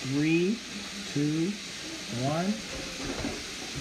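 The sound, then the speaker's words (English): Chicken frying in a pan gives off a steady, hissing sizzle throughout, while several short, rising voiced sounds break in over the top. “Hear that chicken in the background.”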